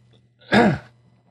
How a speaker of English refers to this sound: Excuse the cough there. I don't have a cough button on this system yet.